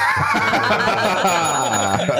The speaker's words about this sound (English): You're going to wear this bell out